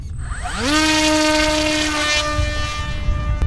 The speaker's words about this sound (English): He's controlling the drone that's whirring away above our heads using just his brainwaves